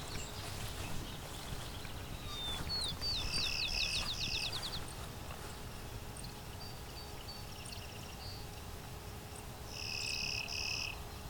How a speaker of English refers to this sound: Well, there's two of them. This bobolink is singing a lot, too.